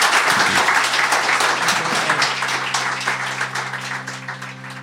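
A crowd applauds steadily for an interview guest, a dense wash of many hands clapping that holds strong and then eases slightly, while a low sustained musical tone rises underneath.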